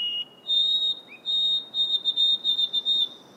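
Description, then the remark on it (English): A white-throated sparrow in Acadia, recorded by Sebastianelli's team, sings clear, pure whistled notes: a couple of long held tones, then a quick run of repeated shorter notes, over a faint background hiss. “And the white-throated sparrow.”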